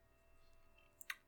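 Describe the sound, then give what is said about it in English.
A quiet stillness broken near the end by two quick, crisp clicks in close succession from a computer keyboard or from clicking through links. “So if you hear banging around on the keyboard or us clicking through links we have pulled up”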